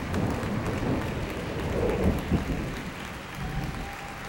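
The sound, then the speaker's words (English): A crowd claps and cheers at the end of a song in a steady, dense wash of applause, with a low, distant rumble of thunder rolling underneath toward the end. “They paused for a moment and heard the end of a song and cheers and applause. Then a roll of thunder tolled in the distance, and the band tore into another song.”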